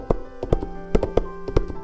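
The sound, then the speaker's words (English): Hooves of the second Billy Goat Gruff trip-trap across a wooden bridge in the Billy Goat Gruff tale: about eight hollow, knocking taps in an uneven, loping rhythm, some falling in quick pairs, over a faint steady hum with no voices. “"Who's trip-trapping across my bridge?"”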